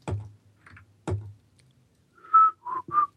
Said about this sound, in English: I wish I could whistle better.